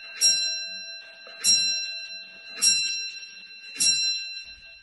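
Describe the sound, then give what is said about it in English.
A clock chimes four times at a slow, steady pace, each bright metallic strike ringing on with a sustained tone that overlaps the next. Nobody speaks. “Here comes the clock.”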